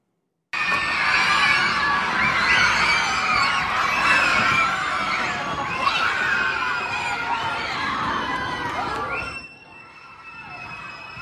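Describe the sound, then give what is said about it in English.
A crowd of students cheers and screams wildly for their third grade teacher, Kathleen Fitzpatrick, in a loud, sustained roar of high-pitched children's voices for about nine seconds, then the noise drops off abruptly, leaving a faint steady tone. “So why are those students cheering so wildly for third grade teacher Kathleen Fitzpatrick?”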